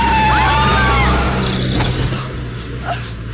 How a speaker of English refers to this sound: They must have lost control. Came right up on the curb. Didn't even stop.